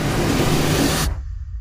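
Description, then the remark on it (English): A loud, dense wash of city traffic noise, cars, trucks and trains blending into one roar, that abruptly thins after about a second, leaving a low rumble. “What if I told you that the sound of a city didn't have to be this cacophony of cars, trucks, and trains we just heard?”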